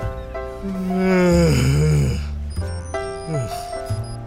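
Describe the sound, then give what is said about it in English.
A voice imitates light, buzzy electronic snoring from an electronic voice box as she sleeps against the hull of a ship: a few drawn-out, droning breaths that rise and fall in pitch, fairly loud, with faint high electronic tones flickering through. “Light snores echoed from her electronic voice box.”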